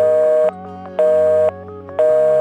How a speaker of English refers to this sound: And if people tried to call you on the phone while you were using it for the internet, they'd hear this.